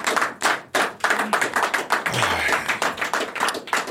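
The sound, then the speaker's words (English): A burst of audience applause for fighter Roy Jones Jr., dense overlapping claps at a steady loud level for several seconds, with a brief low whoop or vocal sweep partway through. “Can we get a round of applause for this brother, man?”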